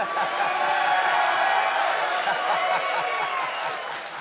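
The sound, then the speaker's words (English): A large arena crowd of wrestling fans chants "you suck" at a wrestler coming out, in loud unison, the voices blending into a sustained roar with scattered cheers and clapping throughout, fading slightly at the end. “How does that make you feel when you come out after all these years and the term of endearment that they choose to cheer is, you suck?”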